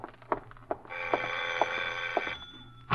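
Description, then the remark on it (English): A doorbell rings in one sustained, bright metallic tone lasting about a second and a half, with sharp clicks earlier and throughout, then falls quiet. No one speaks. “Then, just as you finish putting on your lipstick, the doorbell rings again.”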